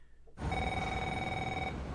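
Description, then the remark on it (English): A cell phone in a movie scene rings with a steady electronic trill, sustained tones held for over a second against a busy background that starts abruptly after a brief quiet moment. “There's a strange focus on cell phones in this movie. Yeah, well, they just kind of pop out. And just people getting phone calls and getting voicemails”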